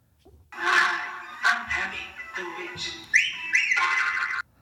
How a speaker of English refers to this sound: So when they introduced Abby, the witch in Firefly Funhouse, yeah. There is a wolf whistle and a boner sound.